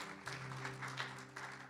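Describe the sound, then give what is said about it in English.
A church audience applauding during a morning service at One Heart church, a soft, steady patter of many hands clapping together for under two seconds, with a low electrical hum running underneath and no one speaking. “A round of applause for Tracy, our sound tech today.”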